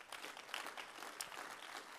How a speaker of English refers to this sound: Turn around to somebody there nearby and say, my faith's not blind. If you're going to help me tonight, I want you to clap your hands to the Lord.